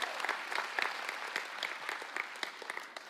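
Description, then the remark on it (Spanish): Steady applause from an audience for all the campuses, including those in Ciudad Juárez and Chihuahua: a dense wash of many hands clapping with sharp individual claps poking through, sustained at an even, fairly loud level throughout without any voices. “Ah, fuerte el aplauso a todos nuestros campus.”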